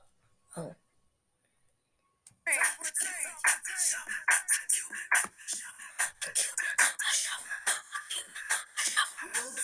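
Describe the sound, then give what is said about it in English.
Feet shuffle and scuff in a quick Cuban shuffle dance step, a run of rhythmic slaps and scrapes on the floor that starts after a short pause, with voices underneath. “Well, not 50, but I learned the Cuban shuffle, which I would like to know if you guys could hear this.”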